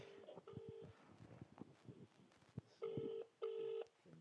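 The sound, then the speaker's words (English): An outgoing mobile phone call's ringing tone on the EE network sounds in steady electronic bursts, one early and then a closely spaced pair, with quiet background noise between them and no answer. “Trying to ring”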